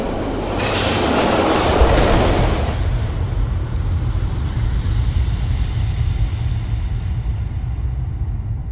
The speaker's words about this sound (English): Then, just as the train is about to burst into the station, a sudden, gut-wrenching shove in the middle of your back sends you flying out onto the tracks in front of the oncoming train. The last thing you see is the train driver covering his eyes.